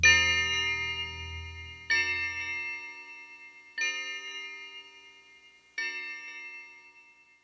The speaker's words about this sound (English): A breeze picks up, sending the old creaky branches of the oak tree swaying back and forth as the ringing of the Skylark bell echoes in the night.